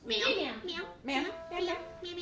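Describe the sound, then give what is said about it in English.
A voice imitates a cat, making a few drawn-out, rising and falling meows in quick succession, fairly loud with no other sounds. “Meow.”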